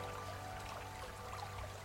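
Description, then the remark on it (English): Gentle water lapping softly in a steady, continuous wash, with small splashy ripples over a low background hum and no voices. “Lapping Water”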